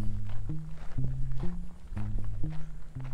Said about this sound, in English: I'm going to need to be quiet now. As quiet as I can be. If I'm going to see a horse, I need to be quiet. I should maybe even quiet my footsteps.